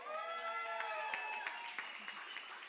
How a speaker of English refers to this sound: Kids, can you all cheer for the kids team?